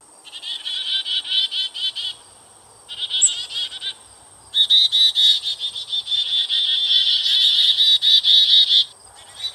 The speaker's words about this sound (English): Specifically, this is a mobbing call. A mobbing behavior is an alarm call to ward predators away, usually done by a large group of birds, and this is done so that they can defend their territory or protect their nesting site.